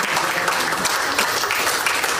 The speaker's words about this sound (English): Can we give God a hand clap of praise for our visitors?